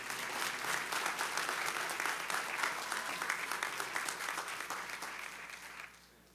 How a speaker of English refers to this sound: And let's give these girls a big round of applause.